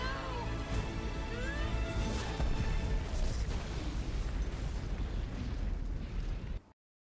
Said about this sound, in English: I'll put in the clip of the thing blowing up behind. The explosion.